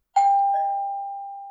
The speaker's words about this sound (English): What? Huh? Who could be ringing the doorbell at bedtime? You're not expecting anyone.